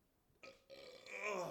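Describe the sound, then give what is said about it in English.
A loud burp that starts with a short gulp, then stretches into a long, rasping belch that grows stronger toward the end. No talking. “Dude, all this surf from making the burp.”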